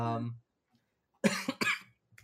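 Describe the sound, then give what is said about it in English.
A brief voiced sound fades out, then after a short silence comes a harsh burst of two or three rapid coughs from a person who has inhaled their saliva. “That right there, that's a subconscious cough.”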